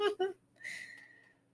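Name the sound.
sneeze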